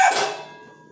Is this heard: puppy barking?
yes